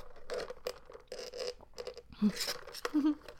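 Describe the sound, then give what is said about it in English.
A plastic Royal Crown coffee cup is handled, giving irregular crinkly, crackling bursts of moderate loudness, with a couple of brief low squeaks as the plastic flexes. “Do you hear the plastic cup?”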